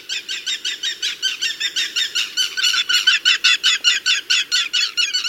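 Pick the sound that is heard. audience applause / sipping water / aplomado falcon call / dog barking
aplomado falcon call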